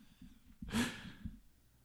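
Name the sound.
snoring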